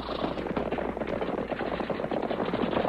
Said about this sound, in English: Wait. I'm going to unload my guns.